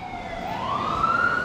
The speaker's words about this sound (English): siren going past the mic in a certain way, siren blocked by a truck